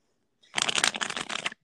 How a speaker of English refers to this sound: I'm going to do one more shuffle.